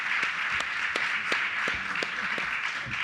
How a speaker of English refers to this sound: Okay, can I offer a vote of thanks to, first of all, the panel? Can you please, let's give them a round of applause for going on in our room.